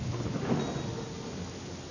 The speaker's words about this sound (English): A storm is coming. Crash goes the lightning. Boom goes the thunder.